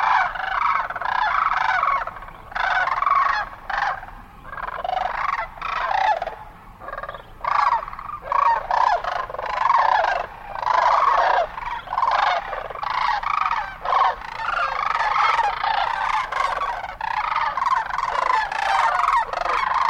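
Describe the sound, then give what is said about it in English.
A flock of sandhill cranes, stopped to feed along the banks of the Platte River near Holdrege, Nebraska, calls continuously, many overlapping rattling, trumpeting voices forming a dense, loud chorus that barely pauses for twenty seconds, with no speech. “Before we go, a quick stop along the banks of the Platte River near Holdrege, Nebraska, where a flock of sandhill cranes has stopped to feed.”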